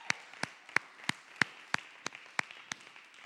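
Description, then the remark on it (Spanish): Steady rhythmic clapping, about ten sharp, evenly spaced claps a third of a second apart, moderately loud with a faint hum between them and no talking, as people applaud together for the birthday of the Icono community. “Voy a pediros que ahí donde estéis, vamos a dar un aplauso todos juntos.”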